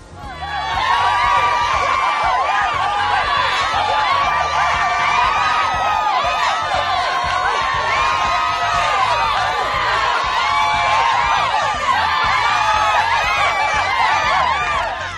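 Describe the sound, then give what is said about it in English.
A large crowd cheers and shouts excitedly without pause, a dense, loud wash of many overlapping voices with scattered high whoops rising above it. “As you can see, we have an excited crowd.”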